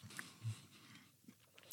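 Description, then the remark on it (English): Soft chewing of chocolate by a man, with a few muffled mouth smacks and faint crunchy clicks spread unevenly over a couple of seconds, quiet and with no one speaking. “He's chewing the chocolate.”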